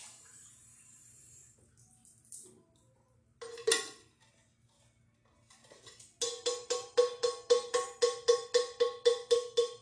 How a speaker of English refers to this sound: Banging on my thermos right now, they're coming through my thermos.